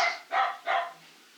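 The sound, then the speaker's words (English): A dog barks three times in quick succession, sharp, with brief gaps between each bark and no voices. “We have a history dog.”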